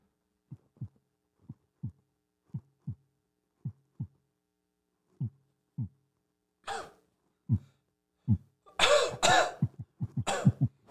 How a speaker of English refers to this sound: How's your heart? Hmm? How's your heart? Earlier you did some heartbeat noises. I just wondered. You want to hear what it sounds like now?